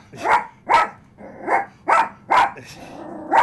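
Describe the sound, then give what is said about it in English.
A dog named Edward barks six times at an arriving visitor, in a fairly steady rhythm, each bark sharp and loud, with brief gaps between them and no talking. “Edward is very barky when it comes to Betty.”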